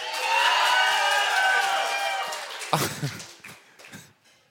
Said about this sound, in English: No, it's funny because he's drunk. He thinks that there was more applause than there really was. That was all in his head. None of that actually happened.